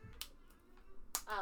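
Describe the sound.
Two sharp, crisp finger snaps about a second apart, the second followed at once by a voice starting to speak, over faint background murmur.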